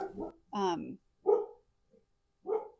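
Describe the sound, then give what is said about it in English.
A household dog barks several times, a short run of loud, sharp barks with brief pauses between them, and no other sounds around them. “Barky, barky. It's our dog.”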